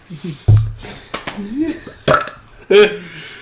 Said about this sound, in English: It's got to be artificial. It has to be artificial? You know, as a kid, I always wanted to burp my command, and now that I'm older, I can do it.